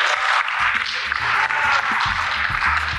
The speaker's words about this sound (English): My boss is like 3 things over, so everybody clap, scream, do something.